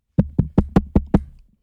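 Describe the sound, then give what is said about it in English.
Six loud, rapid knocks on a door in an even rhythm, each a sharp hollow thud with a low, booming body, followed by silence; a woman's ex is knocking, come to collect. “On the door? Yo, Delisa, open up!”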